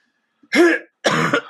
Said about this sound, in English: Sorry, I got to clear my throat of the COVID.